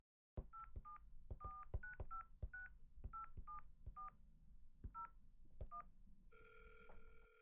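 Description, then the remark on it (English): A quick, uneven run of about a dozen telephone keypad dialing beeps, each short and distinct, followed by a steady electronic ringing tone that starts near the end and continues. “Why don't you try calling again?”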